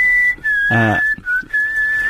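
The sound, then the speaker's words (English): Someone whistles a steady, high, sustained tune in a few long held notes with short gaps, briefly interrupted near the start by a short, low, buzzy voiced sound. “Country walks, whistling and animal noises.”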